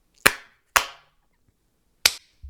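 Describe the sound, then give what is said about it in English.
Loud, sharp hand claps made to calibrate recording audio ring out alone: two in quick succession, then a pause before a third, followed by a faint low thump. “Like, just clap really loud on your end so, like, I know how to calibrate it.”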